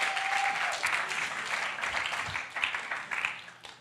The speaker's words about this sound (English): Give her a wonderful round of applause.